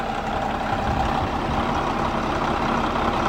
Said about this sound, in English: Is that his big Peterbilt dump truck? Doesn't Randall drive the big the Pete? I think so, but hold on a second. How can that be the same engine?